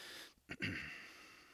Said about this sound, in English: I mean, I take a deep breath to reset my brain.